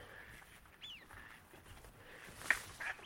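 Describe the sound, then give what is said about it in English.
Faint wader calls drift across a quiet open estuary marshland with big lagoons full of water: a few thin, rising whistles and a brief sharper note, scattered over soft background hiss. “You can hear a bit of wader action.”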